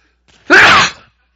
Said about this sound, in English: I'm going to sneeze. Excuse me.